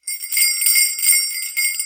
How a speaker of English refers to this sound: Just hear those sleigh bells ring-a-ling, ting, ting, ting-a-ling too.